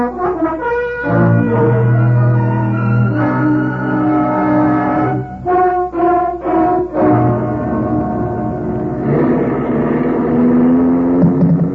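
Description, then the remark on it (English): A car engine drones steadily as it drives, its humming pitch shifting up and down with a few brief dips and surges, loud and continuous with no voices. “Very well. I'll drive you.”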